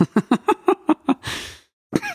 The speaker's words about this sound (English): I just coughed and got to wipe it all down again.